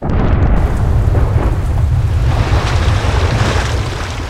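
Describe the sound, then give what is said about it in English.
A house shakes and groans in a loud, deep, continuous rumble with a rough, crackling texture, holding steady for a few seconds before easing slightly at the end. No voices. “As he says the name, the entire house shakes and groans.”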